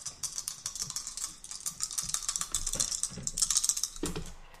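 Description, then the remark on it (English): Dice rattle and clatter across a hard surface in a quick, continuous flurry of small clicks, moderately quiet, with no voices. “Oh god, I did worse. Six. I feel like we need to get a dice jail for you.”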